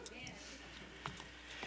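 Keys on a ring jingle in a few quick, light metallic shakes, fairly quiet, with bright tinkling clinks over a soft background hum.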